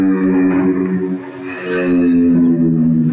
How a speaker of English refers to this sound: That's apparently the sound that a giraffe makes there. Fred McCauley has requested that he's brought on, not to applause, but just to that sound.